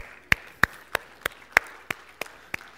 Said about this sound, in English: Oh, clap for Jesus.